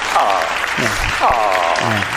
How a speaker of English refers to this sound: can we get the applause meter on that? He's slow on the applause. There you go.